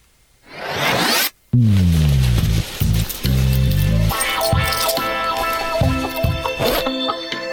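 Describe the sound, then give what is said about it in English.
A quick, raspy zipper pull lasting about a second, fairly loud, followed after a brief pause by a bouncy musical jingle with descending tones. “All right, we've pulled the zipper down.”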